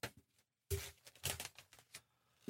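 Four dice, including a fortune die, clatter across a hard tabletop in a quick burst of sharp, overlapping clicks that scatter irregularly and then settle, fairly loud, with no voices.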